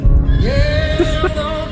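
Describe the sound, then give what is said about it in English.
A horse whinnies loudly, a long quavering call that holds steady, over a low rumble of movement that could be hoofbeats, from a Rambo film trailer in which Rambo is riding a horse. “At this point, Rambo's riding a horse, if you must know.”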